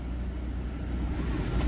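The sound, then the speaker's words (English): A steady low rumble inside a car sitting on Canal Street in downtown New Orleans on September 7th, with muffled road and engine noise and faint traffic hum from outside, holding constant with no voices. “Sitting on Canal Street right now, inside my car.”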